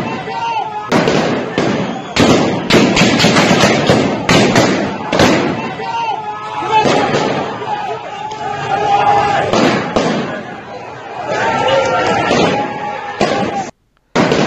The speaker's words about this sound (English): Okay, this one is crazy because I can hear gunshots, but people are not like running.